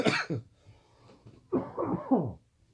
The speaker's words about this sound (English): Probably made it louder. You know, right? Imagine. It's like super just loud. Everyone just goes deaf listening to the show now because I coughed.